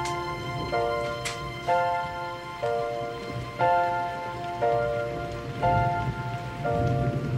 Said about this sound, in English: Gee, I'm glad it's raining. There's always something to be thankful for. I'm awfully glad it's raining, 'cause no one sees your teardrops when it pours.